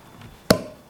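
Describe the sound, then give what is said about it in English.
A single sharp pop as a bottle of sparkling hard cider, made from the apples of a 100-year-old orchard, is opened, a sudden loud burst followed by a short hissing tail fading quickly, with no voices. “My husband and I marked the occasion of that evening by opening a bottle of sparkling hard cider made from the apples of a 100-year-old orchard.”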